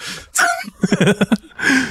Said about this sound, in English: sorry, I got a weird coughing fit there.